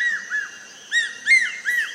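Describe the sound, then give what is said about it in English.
A hawk-eagle calls with a series of clear, high whistled notes, some rising and slurred, repeated in short bursts, with no talking. “More than 2 feet tall, the hawk eagle's head and neck are handsomely patterned in black, white, and rust below a tall black crest.”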